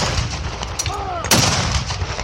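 A single loud cannon blast booms out midway, preceded by a brief whistling tone, over a constant low rumble of battle noise; no one speaks.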